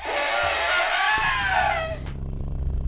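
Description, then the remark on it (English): A voice imitates a male elephant: a loud, shrill squealing cry for about two seconds that drops into a deep, throaty rumble. No words are spoken. “That's the way that male elephants rumble.”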